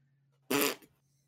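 A single short, loud fart sound bursts out and fades within about a third of a second, standing alone over a faint low background hum with no talking.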